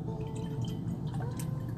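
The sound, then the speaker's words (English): Liquid dribbles from a bottle as the pour stops, in a few soft, irregular splashes and drips over a steady low background hum, fairly quiet, with no talking. “At the downside of the pour, the pour stops, yeah.”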